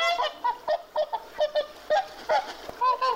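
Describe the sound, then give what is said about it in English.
A swan honking: a rapid series of loud, nasal honks, about a dozen harsh calls in quick, uneven succession, each with a rising-falling brassy tone. No voices are heard. “The swan would honk at anyone who came near Hugh of Lincoln using phrases such as”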